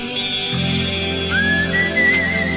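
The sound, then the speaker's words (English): Someone whistles a short melody, a rising note sliding into a few sustained pitches, clear, over a steady low background drone with no speech. “there's a dog in the neighborhood that'll only come if you whistle that bridge over the river Kwai whistle”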